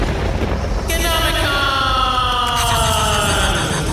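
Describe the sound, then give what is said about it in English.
A voice imitates a snake's hiss: a sustained, breathy high-pitched hiss that starts abruptly and carries a falling, whistly tone throughout, loud and steady for about three seconds. “Know what mold sounds like, so I made a snake sound instead.”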